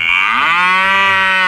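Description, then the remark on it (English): A single loud cow moo, rising into a sustained, harmonically rich bellow that holds steady for over a second, with no talking. The cow was kissed on the mouth by a South Carolina school principal wearing lipstick, as part of a fundraiser for the school's 4-H club. “Principal, school there, had to slap on some lipstick and kiss a cow in the mouth.”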